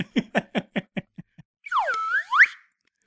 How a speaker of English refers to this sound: Totally worth the 5 minute pause that took to find the slide whistle.